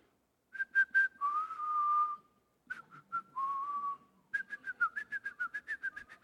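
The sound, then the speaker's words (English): Someone whistles the famous opening of Beethoven's Fifth Symphony: three quick notes falling to a long held lower note, played twice, then a rapid run of short notes, clear. “One day, shortly before she died, she began to whistle the famous beginning of Beethoven's Fifth Symphony. You know how that goes?”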